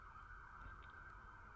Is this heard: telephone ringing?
no